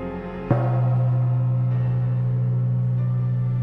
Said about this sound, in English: The gong strikes. My time is up.